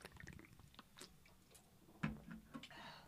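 Someone sips a drink, with small wet mouth clicks and a louder slurping gulp partway through, then a soft swallow and quiet lip noises. No one talks.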